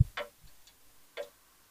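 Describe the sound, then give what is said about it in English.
A grandfather clock ticks steadily, with crisp clicks about a second apart and softer tocks in between, heard alone with no talking. “It's just the grandfather clock.”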